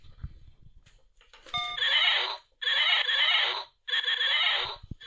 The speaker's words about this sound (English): Let's try the horse.